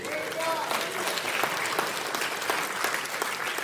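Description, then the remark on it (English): An audience claps to the Lord steadily for several seconds, a dense roomful of overlapping handclaps at moderate volume with faint crowd murmur and voices underneath. “Right there deserves a hallelujah, an amen, maybe even a clap to the Lord, right?”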